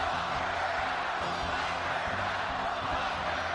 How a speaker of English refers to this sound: It's a scene we haven't witnessed in months, a large indoor gathering with thousands of supporters cheering President Trump, a campaign relaunch one Republican strategist said was much needed after a brutal few months.